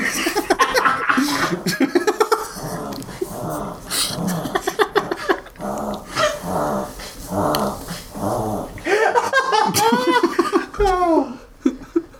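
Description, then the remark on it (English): A small dog has a reverse-sneezing fit: loud, rapid, rhythmic snorting honks and gasps that run for about twelve seconds, turning into higher, wheezy squeals toward the end. “That's reverse sneezing. It's a sneezing fit in reverse.”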